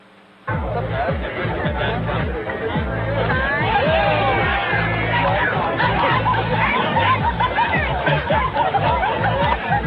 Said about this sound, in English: Again, not great audio, but you hear two crowd reactions. One, Rodgers throwing the pick. And then you hear the crowd reacting because Aaron, they give him the ball back, and Aaron just takes it and just fires it at the kid from behind.